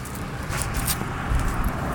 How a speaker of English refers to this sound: That's some sort of, flatbed utility truck.